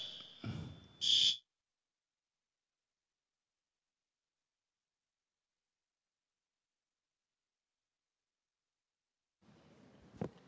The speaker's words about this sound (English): And another answer to prayer is that our alarm system works really well at this church, and it actually will be triggered too easily, not too late.